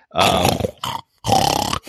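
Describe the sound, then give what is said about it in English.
A voice imitates a Peppa Pig snort: two loud, rough, grunting bursts, each about half a second long, separated by a brief gap, with a shorter snuffle trailing each one and no speech. “It's going to be lots of snorts. Tons of snorts.”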